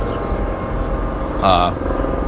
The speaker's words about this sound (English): Helicopter overhead.